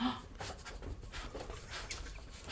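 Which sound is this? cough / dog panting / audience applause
dog panting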